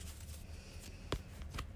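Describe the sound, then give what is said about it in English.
A deck of tarot cards is shuffled, a soft continuous riffle broken by two sharp card flicks near the end. It is quiet, with no talking. “I'm just gonna shuffle here quick.”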